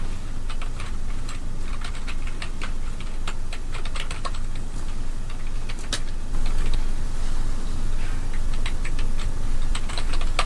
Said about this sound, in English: Am I typing?